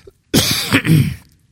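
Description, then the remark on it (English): A single harsh cough, fairly loud, breaking into a rough, throaty burst that trails off after about a second, with no talking around it. “Time for a cough drop.”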